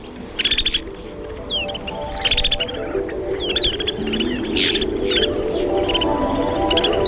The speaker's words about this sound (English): The bird is Plectrophoenix nivalis, better known as the snow bunting.